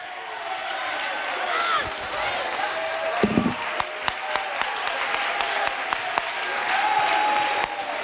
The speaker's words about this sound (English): Come on, come on, clap to that. Show the devil. Show that spirit of division. Come on, as you're clapping, you ought to say, God, I thank you for my wife.